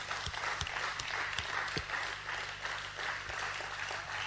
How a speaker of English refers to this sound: And let's just give God a clap for that. Thank you, God.